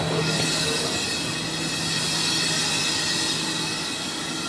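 Steady, loud rumble and hiss of a passenger train carriage in motion on the line to the northern city of Kaduna, with faint high tonal whines over continuous track noise and no voices.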